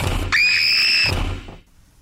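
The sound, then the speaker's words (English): A single loud, shrill scream rings out for under a second, piercing and steady in pitch, then cuts off, leaving a brief fading tail and quiet. “This is so no one outside can hear your screams.”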